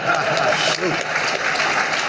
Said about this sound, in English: That's Deion Sanders. He tells people to clap. They clap. They follow every word that comes out of his mouth.